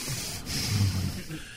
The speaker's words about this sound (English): you're breathing into the microphone. You told me to stay close. That's only when you speak.